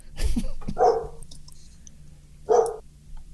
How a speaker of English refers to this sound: Dog from hell. Dog's chiming in.